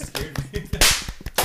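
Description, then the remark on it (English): A quick string of sharp, fleshy smacks lands in an uneven rhythm, with one much louder, harsher slap in the middle and another crisp hit at the end. “Don't smack me again.”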